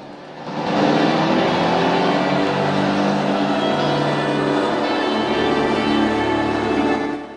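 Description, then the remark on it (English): A motorboat engine starts up as a Buddhist boat carrying Rambo and a monk in orange robes sets off from a jetty, settling into a steady, loud droning rumble with a rising pitch, running continuously with no voices. “Having not heard Troutman, Rambo boards the boat and hands the cash to a monk in orange robes. The boat sets off.”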